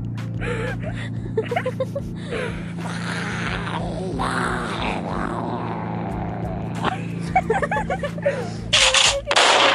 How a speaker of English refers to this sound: Whoa! What? That was an explosion! That was. Whoa!